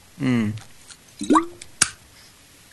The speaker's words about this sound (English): Here we go. I had to like drink my water and want like a really dramatic effect.